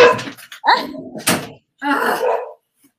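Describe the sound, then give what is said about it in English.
A dog barks in a few short, sharp bursts, with a longer rough yelp toward the end, loud and alone with no one speaking. “Hey, now we're talking about dogs.”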